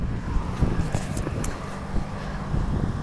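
A car drives past outside, heard as a low, muffled rumble of engine and road noise that stays fairly steady through the moment, with some faint wind-like hiss.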